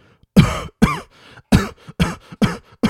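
A harsh, hacking coughing fit: about seven loud, rough coughs come in quick succession, close and strained, with short gasps between them and no talking.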